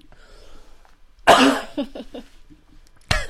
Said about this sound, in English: I'm yawning. And coughing. Ugh.